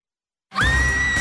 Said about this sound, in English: A concert for the band your daughter loves. You, your little girl, and 10,000 screaming 11-year-olds.